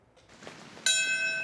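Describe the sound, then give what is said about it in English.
A memorial bell is struck once in New York City, marking 21 years since the 9/11 attacks at the moment the first plane hit the World Trade Center's North Tower; its bright metallic tone rings out steadily and clearly after a few moments of faint background hush. “New York City, a bell was rung, followed by a moment of silence, commemorating the exact moment when the first plane hijacked by Al-Qaeda terrorists slammed into the North Tower of the World Trade Center.”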